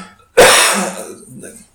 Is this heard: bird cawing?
no